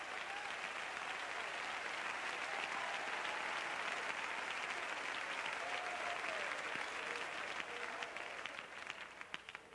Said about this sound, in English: Clap your hands and entertain the mighty presence of the Holy Ghost that's in this place tonight.